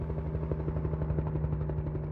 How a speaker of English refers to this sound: Choppers aren't cheap to fly.